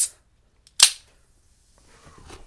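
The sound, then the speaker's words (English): A beer can top pops open with one sharp, bright crack and a short fizzing hiss, then faint rustling follows. No one speaks. “All right, I'm just going to pop my top here.”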